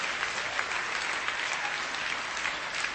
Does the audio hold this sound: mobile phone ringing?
no